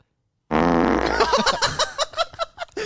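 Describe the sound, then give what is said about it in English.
A loud fart sound effect starts abruptly after a brief silence, a long buzzy blast that breaks into a rapid series of sputtering pops toward the end. “That's the original fart we used for the fart sneeze on the radio show as well.”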